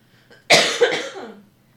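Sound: coughing fit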